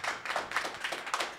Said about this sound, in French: On applaudit Jeff.